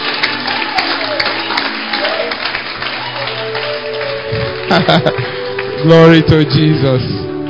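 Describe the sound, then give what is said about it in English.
An audience claps in a dense, steady patter, mixed with a murmur of voices; partway through, louder voices break in over the fading applause. “Clap well.”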